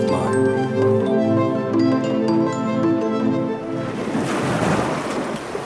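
Sustained, droning musical tones give way to the loud rush of ocean waves breaking and washing onto shore, which fills the last couple of seconds.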